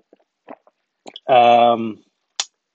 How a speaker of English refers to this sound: another sip, sorry.